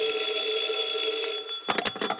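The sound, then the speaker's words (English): A telephone rings in Penny's home in the late afternoon, with a steady, high electronic trill that holds for well over a second, then cuts into several quick, choppy bursts of ringing at the end. “It's later afternoon now, and in Penny's home, the phone rings.”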